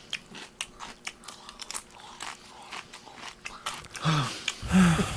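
Close-miked chewing of jelly beans, a steady run of sticky, crunchy bites and smacks, loud and near, ending with a short murmured vocal sound.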